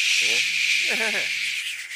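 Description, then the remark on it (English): A voice imitates a cicada's buzz with a steady, hissing drone that runs the whole time, broken by two short voiced hums partway through. “Well, at least you don't cut grass, like so they do this buzzing sound in the trees.”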